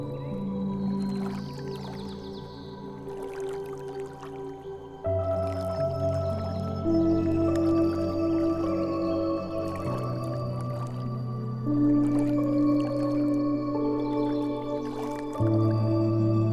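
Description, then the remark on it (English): Scattered water drips and soft splashes, irregular, sound over a sustained ambient musical drone whose chords shift slowly; no one speaks. “You bring another handful of water to your belly, letting the welcoming liquid cleanse and clear.”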